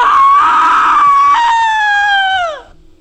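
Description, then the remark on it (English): A single loud, sustained scream, high and steady for about two and a half seconds, dipping slightly partway through before its pitch slides down and cuts off. “Now that's a scream!”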